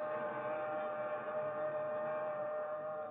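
A fast-approaching southbound express train blares one long, steady horn at a station platform, loud, holding its rich droning tone without a break from start to finish. No voices are heard.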